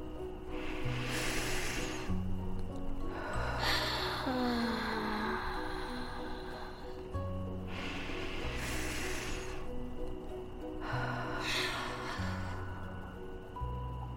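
A child strains to force out a yawn, with four breathy, hissing gasps and exhales spaced a few seconds apart over soft, steady background music.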